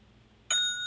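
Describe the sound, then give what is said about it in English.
A single bright boxing ring bell ding strikes suddenly and rings on with a clear, sustained metallic tone, loud, with no talking over it. “can you give me a ring bell, dude?”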